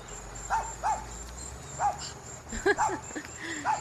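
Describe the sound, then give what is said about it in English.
A dog in a played recording lets out a series of short, high, rising-and-falling yips and whines, irregularly spaced and moderately loud, over a thin steady high-pitched whine like insects in the background. “He liked to talk to other dogs too.”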